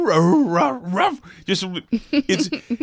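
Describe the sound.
A human voice imitates the dogs heard from different sides of an arena during the national anthem, starting with drawn-out wavering howls and moving into a quick series of short, sharp, loud barks and yips.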